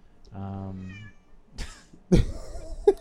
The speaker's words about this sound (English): We've got this cat that's trying to blow up our spot right now. Yeah, right. Here, let's talk to the audience, cat.